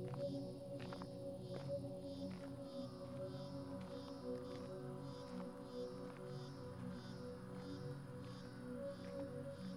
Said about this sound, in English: the landscape changes to patchy grass mixed with tall agave plants. There's a chorus of crickets and cicadas.